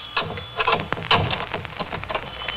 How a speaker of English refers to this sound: Until I unlock my door.